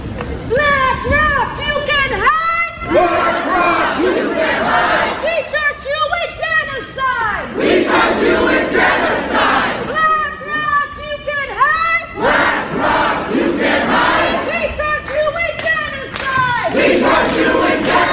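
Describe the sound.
A large crowd of protesters occupying the Black Rock building in New York City shouts and chants together in the morning in loud, rhythmic bursts, voices overlapping continuously with brief dips between chant phrases, filling the whole clip with raised, echoing group yelling.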